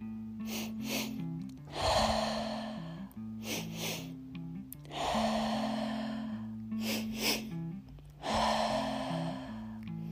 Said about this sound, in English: Move at a pace and a rhythm that's comfortable for you. There should be no straining to breathe. 2 inhalations and a complete exhalation.